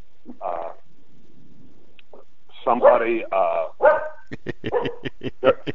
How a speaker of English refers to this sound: those are my, that's my security system. My dogs are here.